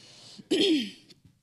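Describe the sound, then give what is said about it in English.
One loud, harsh chest cough from a sudden chest cough bursts out after a brief lull, rough and throaty with a voiced tail that drops in pitch before fading; a faint breathy stir comes before and after. “I've had this chest cough that came on suddenly that has nothing to do with speaking today, right?”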